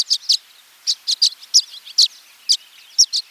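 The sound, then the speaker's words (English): Violet-green swallows gathered on electrical wires in the western United States before migration chatter in quick, high twittering chirps, a dozen or so sharp bright notes in loose pairs and clusters with softer buzzy trills between them, no voices present. “But now, they gather on electrical wires by the dozens in the western United States, chattering away as part of their pre-migration networking.”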